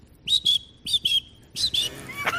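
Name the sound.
voice imitating cricket chirping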